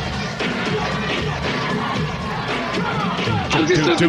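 A boisterous theater crowd cheers wildly, a dense, continuous roar of shouting and screaming voices that stays loud throughout and swells slightly toward the end.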